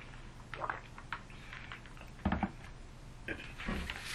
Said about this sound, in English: I'm going to grab just a sip of water real quick.